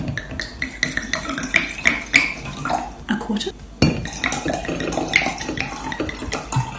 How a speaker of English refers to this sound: Did you see this homeschooling mom who sets up a video in her house and she's teaching fractions using what starts as an empty glass that she fills with wine?